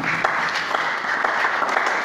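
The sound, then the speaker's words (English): A crowd claps steadily, a dense, continuous wash of many hands striking with a few sharper individual claps popping out, holding at an even, fairly loud level with no voices. “Are they clapping when they are not clapping?”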